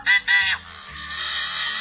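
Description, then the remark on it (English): A yellow-headed blackbird's harsh call: two loud, raspy squawks in quick succession, then a long, grating buzz that drags on, with no voices. “And maybe that fingernails on a blackboard call explains why its genus contains no other members.”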